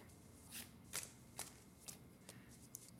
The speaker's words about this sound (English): Although these cards are harder to slide into each other. My shuffling is mostly cutting the deck. I try to shuffle.